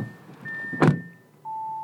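A car door shuts with a single solid thunk, between steady electronic chime tones from the car's dashboard, as three people get into a car in Denver, Colorado, to drive to the state's lowest point in Yuma County. No one speaks.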